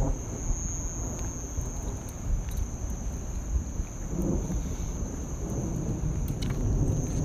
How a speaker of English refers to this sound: Good thing I decided to turn back, because it's raining a little harder now. Oh. That lightning was close.